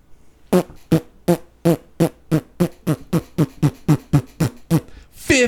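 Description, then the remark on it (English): A steady, rapid run of about fourteen squelchy armpit farts, fairly loud, each a short wet burst at an even rhythm, with no talking. “Armpit farts.”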